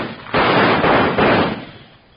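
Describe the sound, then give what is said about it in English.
A loud burst of gunfire in the dark, roughly three shots fired in quick succession that blur into one sustained, harsh roar before dying away, as a lantern is shot out. No voices are heard. “You reckon you shot him?”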